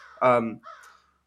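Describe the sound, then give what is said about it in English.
A single loud, raspy comedy crow caw sound effect rings out, played in response to a joke, followed by a shorter, fainter trailing squawk before fading to silence. “Sure, I'll give you a Comedy Crow for that.”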